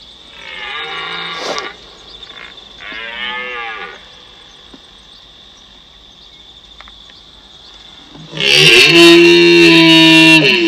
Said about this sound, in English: This is a red stag roaring. This was posted by Mountain Hunters New Zealand.